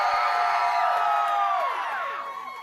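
An audience at Sister Louisa's church cheers and whoops loudly as an entertainer is welcomed to the stage, a dense wash of voices with high, sliding shouts rising and falling over it, holding steady before beginning to taper off at the end.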